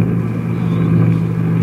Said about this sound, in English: Her magnetium hull white hot from the friction of the atmosphere. Her jet brakes belching fire. She's right over the field now. She's coming down. Down.